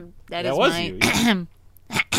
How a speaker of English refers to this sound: All right. Well, hang on. Let me clear my throat.